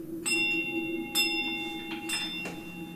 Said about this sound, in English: A small bell is ringing. School sound. Well, as far as I can tell, that's the only normal thing in this area. Can we tell what way that bell's coming from? North of your position, yes.